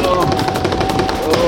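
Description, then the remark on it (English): A quick, loud drum roll, with rapid even strikes running steadily for about a second and a half. A thin sustained tone hums along underneath. “Little drum roll.”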